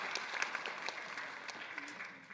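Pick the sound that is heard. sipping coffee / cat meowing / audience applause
audience applause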